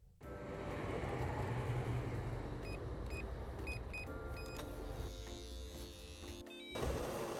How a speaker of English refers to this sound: What about the kettle going on? That's rubbish. That's rubbish.